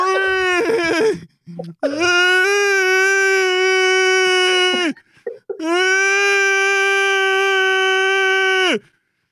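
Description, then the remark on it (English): Voices imitate a tornado alarm siren with a short wavering start, then two long, loud, steady wailing tones, each held for about three seconds, with a brief breath between them. “Everybody, let's make a sound of a tornado alarm.”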